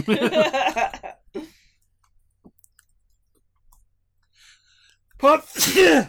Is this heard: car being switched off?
no